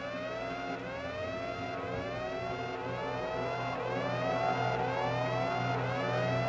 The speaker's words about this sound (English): I just like listening to the siren. Sounds cool.